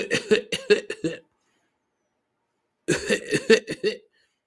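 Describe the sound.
A voice imitates little kids coughing at the back of a bus, in two quick bursts of several rapid, raspy coughs each, separated by a few seconds of silence; fairly loud, with no other sounds around them.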